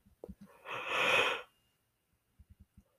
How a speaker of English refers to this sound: Ooh, excuse me for yawning. I keep yawning.